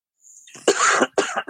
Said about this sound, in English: Yo, don't fucking cough in a podcast, kid.